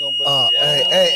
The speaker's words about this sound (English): Brother, smoke alarm. Smoke alarm. Hey, right there behind you. Hey, right here. Shake it. There you go.